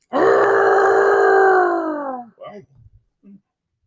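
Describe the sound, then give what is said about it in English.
A person howls like a wolf: one loud, sustained vocal note lasting about two seconds, sliding slightly downward in pitch, then trailing off into a few short, breathy voiced sounds. “What, was that a yodel or a howl? That was a howl.”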